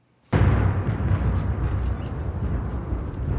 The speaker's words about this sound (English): You hear that thunder?